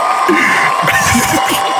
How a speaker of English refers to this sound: Another round of applause.